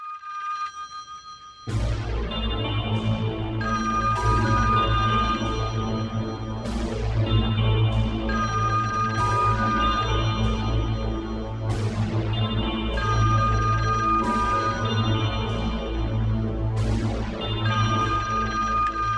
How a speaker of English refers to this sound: But so if you skip to like, yeah, like a minute in, her phone is ringing while it's unplugged. Give that a listen.